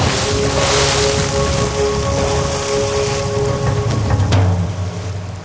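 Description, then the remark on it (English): A loud, continuous wash of splashing, churning water, with a sharper burst of splash toward the end, like a cannonball jump into a pool. No voices are heard. “as together we go swimming in the deep end. Cannonball!”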